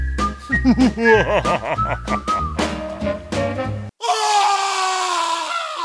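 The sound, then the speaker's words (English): A short whistled melody with sliding, wavering notes plays for a few seconds, cuts off, then a loud sustained scream takes over and holds to the end. “See, I added a scream there at the end.”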